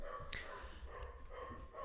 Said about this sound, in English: And also sometimes a dog barking.